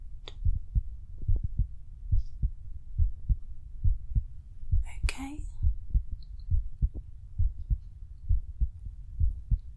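A patient's steady heartbeat through a stethoscope during a medical examination, deep muffled lub-dub thumps repeating at an even, moderate pace, with a brief scratchy rustle partway through.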